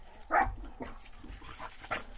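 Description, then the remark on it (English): A dog, one of two dogs named Beavis and Butthead, gives a few short, yappy barks spaced across a couple of seconds, fairly quiet, with no one talking. “So the moment that comes in, as Larba Loba barks beautifully, or no, it's your doggy, I think.”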